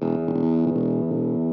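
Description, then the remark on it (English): A heavily distorted electric guitar played through a sputtery octave fuzz pedal, thick and buzzy with a gated, breaking-up edge, sustaining loudly with no voices. “I love that sputtery stuff.”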